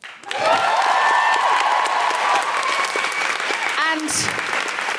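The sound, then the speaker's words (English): A large audience bursts into sustained applause with whoops and cheers rising above it, loud, filling the space for several seconds before starting to thin out. “Could we please have a big round of applause for Lara and Samuel?”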